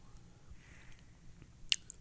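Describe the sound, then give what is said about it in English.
Quiet mouth sounds of someone sipping a thick, syrupy, honey-like drink, with a soft low rumble and two brief wet slurps near the end. No one speaks. “Oh, you sipped already?”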